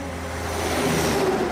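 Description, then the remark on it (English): Heavy trucks rumble past a house, the engine noise swelling steadily louder over a second and a half with a low, droning growl. “Oh, something's gotta be done about those trucks.”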